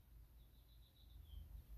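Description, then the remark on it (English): Faint birds chirp outside a window in a thin, high-pitched run of calls over a low background rumble, with no one speaking. “Hold on, I'm going to pause the music so you can hear the birds. The birds been chirping outside my window, baby.”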